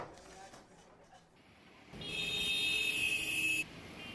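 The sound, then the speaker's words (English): Low rumbling jammed city street traffic with a loud, sustained horn blaring for over a second, then cutting off as the engine noise continues underneath. “Traffic. It's jammed.”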